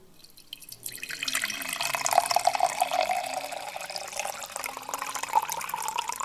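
Room-temperature water is poured steadily into an empty cup, a continuous splashing stream that rises slightly in pitch as the cup fills, fairly loud with no voices.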